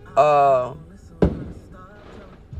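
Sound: fireworks exploding outside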